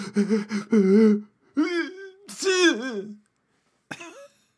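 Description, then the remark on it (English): A voice acts out a sneeze, as if from dust kicked up into the nose: a run of rising, breathy "ah" build-ups, then a loud, sharp burst and a short trailing gasp after a brief pause. “Kicks up all the dust in the room, gets into everybody's noses, including yours, and everybody sneezes. Everybody stops to go.”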